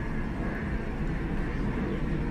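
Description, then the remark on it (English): A steady, rumbling roar of an airplane flying overhead, a continuous low drone with a broad hiss above it, holding an even loudness throughout with no voices. “Sorry, plane.”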